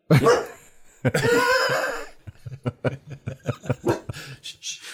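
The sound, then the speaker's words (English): A dog barks loudly, two big barks up front, then a rapid string of shorter, choppy barks and yips that keeps going to the end. “And there we have it. Down. Good boy.”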